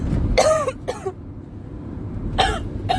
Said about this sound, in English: I'm sorry for my smoke or coughing.